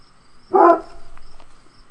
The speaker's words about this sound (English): Oh, do you hear sirens in the background? Yeah, I hear sirens. That's what he's barking at.